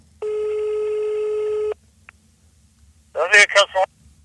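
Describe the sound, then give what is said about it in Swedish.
A single long, steady telephone ringing tone buzzes for about a second and a half as a call is placed, then stops; after a short pause a voice briefly speaks, answering the call. “Vi ringer”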